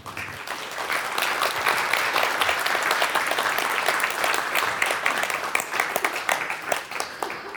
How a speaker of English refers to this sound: Would you give Annika a round of applause?